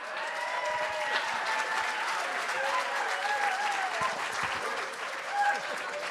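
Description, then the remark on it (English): Sustained audience applause at a book event welcoming the author Paul Howard, a dense, steady wash of many hands clapping at an even loudness for about six seconds, with faint voices and cheers mixed into the crowd noise. “Would you please put your hands together for Mr. Paul Howard?”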